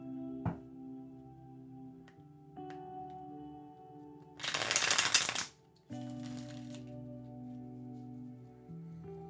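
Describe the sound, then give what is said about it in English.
A deck of tarot cards is riffled in one quick, crisp burst lasting about a second, fairly loud, while soft sustained music plays steadily underneath and no one speaks. “All right, cards look like they've shuffled up.”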